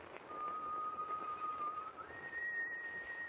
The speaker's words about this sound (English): Gosh. It's the Whistler. Nonsense, lad. It's just whoever's whistling is standing right outside on deck. I suggest we... Wait, matey. He's moving off.